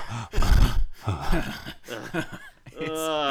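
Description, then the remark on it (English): Heavy, labored male breathing and groaning at the opening of a film, coming in rough bursts of breath, ending with a strained, drawn-out vocal groan. “And not just that, this movie opens with a lot of disgusting male breathing.”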